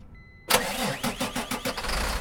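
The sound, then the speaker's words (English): A rollback flatbed tow truck with a Mercedes-Benz 906 engine is started by remote start: after a short electronic chirp the engine cranks and catches, settling into a loud, rhythmic rumbling idle with repeated pulsing revs. “Has a remote start, it has air brakes, airbags, air horns, and it's a nice rollback flatbed tow truck.”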